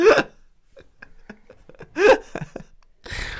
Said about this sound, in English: One hiccup then. That's all it takes.